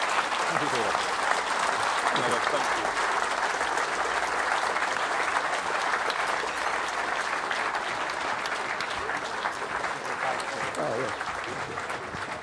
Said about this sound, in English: So please, let's finish off by another round of applause for these great gentlemen. Thank you very much.